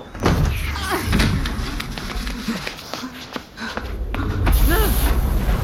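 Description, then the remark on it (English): A heavy metal blast door of a bunker slams shut with a deep, booming thud, followed by a few sharper knocks over a low rumble, with strained voices. “The door, what did you do to me?”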